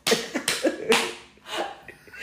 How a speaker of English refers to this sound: You ain't. What you gonna do? Clear my throat?